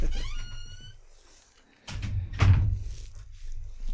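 A squeaky door creaks open as someone comes in, with a high, wavering squeak lasting about a second, followed by two heavy thuds and a low rumbling clatter as it moves and settles.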